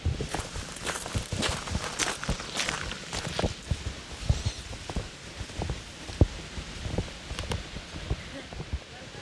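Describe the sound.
Footsteps crunch and scuff steadily outdoors in an uneven walking rhythm, over a soft background patter of light rain and occasional faint voices, as someone wanders around Dolly Parton's childhood home, where a little creek runs through.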